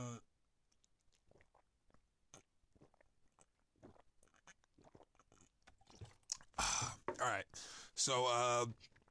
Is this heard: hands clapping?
no